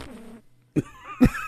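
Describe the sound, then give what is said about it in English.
A voice makes two short, buzzy raspberry bursts imitating a fart as the punchline of a joke, fairly loud, with a brief pause between them and a wavering vocal tone trailing after each. “Was the poop doing a fart impression?”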